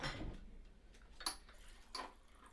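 Someone rummaging through a fridge: soft, scattered clinks and rustles, with two sharper clatters like bottles or containers knocking together, all fairly faint and with no talking.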